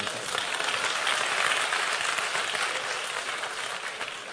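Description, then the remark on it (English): Sustained audience applause, a dense, steady wash of many hands clapping at a fairly even loudness throughout, with no voices breaking through. “I knew that applause was going to come, and he deserves another one.”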